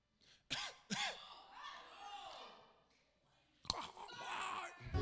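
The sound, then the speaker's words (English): A voice imitates coughing and hacking: two sharp coughs, a drawn-out raspy rasp, then another burst of harsh, throaty hacking. “They doing all this coughing. No mask! Just coughing and hacking and breathing.”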